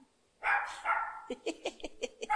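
A dog barks, two longer drawn-out barks followed by a quick run of about six short, sharp barks in steady rhythm, with no one talking.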